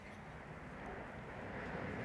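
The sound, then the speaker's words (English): A steady, broad roar of a large jet passing overhead, a continuous low rumble with a hissing wash on top, fairly faint and unchanging across the whole stretch with no talking. “That's a big jet right there.”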